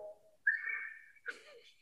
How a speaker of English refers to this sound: So, starting with letter A, …'s …. This is what that sounds like.